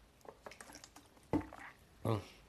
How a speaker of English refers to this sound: Drinking water. That's part of this podcast, guys.